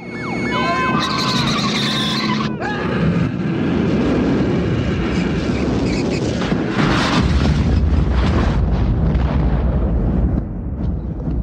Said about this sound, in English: Then we see him chasing right behind that villain, who then zooms out of control into a collection of gas tanks just off the road. Sure. Resulting in a giant explosion.